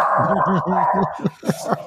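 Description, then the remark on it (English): A puppy named Ruby barks: a quick run of high, whiny yips in steady rhythm, then three sharper, louder barks at the end, with no one talking. “That is my puppy Ruby, who's not a fan of Mom.”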